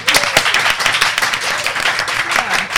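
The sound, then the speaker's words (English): An audience at a live event applauds on the presenter's request: many hands clapping at once in a dense, steady, fairly loud wash of sharp claps that continues without a break, with no voices over it. “So could I have a clap, please?”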